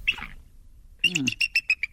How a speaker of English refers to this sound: that is the sound of a bald eagle. I mean, that one little part just sounds like it's eating something. Yeah. It's chewing on something. Or it's got something in its throat.